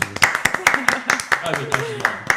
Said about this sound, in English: So a big shout out to Sabahani. Round of applause for Sabahani.